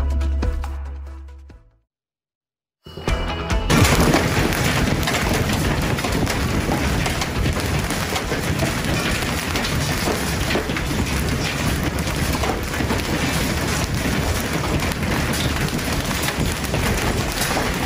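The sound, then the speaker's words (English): Hailstones the size of tennis balls pound the ground in Texas in a loud, dense, continuous clatter that roars steadily without letup, following a brief low rumble and a moment of silence at the start. “We bring you the bull that was a bull running for cover as hail the size of tennis balls hammered parts of Texas.”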